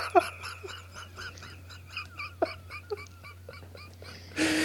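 A dog whimpers and whines in a run of short, high, squeaky cries over a low steady hum, ending in a sudden burst of noise.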